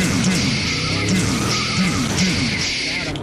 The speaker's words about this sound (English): And he's used to looking out the windows and seeing cars pulling up to deliver those pizza. Uh-huh. This car is going to be pulling up for a little drive-by douching.